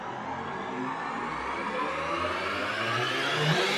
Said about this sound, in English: A second later, the ship's lights flashed and the loud whir of its engines drowned out the sound of laser fire.